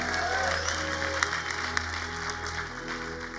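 An audience claps steadily as praise to God in a dense, continuous wash of applause, with a low sustained hum underneath and a few sharper claps popping out above the crowd noise.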